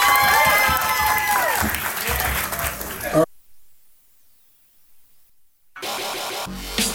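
A loud burst of crowd applause and cheering for a performer at a show fills the first few seconds, then cuts abruptly to near silence before noisy sound returns near the end.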